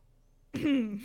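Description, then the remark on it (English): A single staged cough, voiced and drawn out with a gravelly throaty tone, bursts in after a short silence and fades within half a second. It's fairly loud, with no talking. “Do. Cough.”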